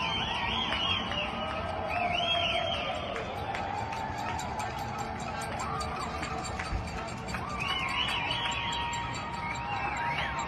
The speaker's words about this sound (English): This is what happens every day when the healthcare workers are done with work around 7 p.m. Everyone that is self-isolation in their homes go out to their balconies and give a round of applause at 7 p.m. every night. This is what it sounds like.